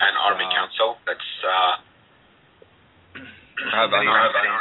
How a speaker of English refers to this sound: Somebody's got their speakers on and echoing.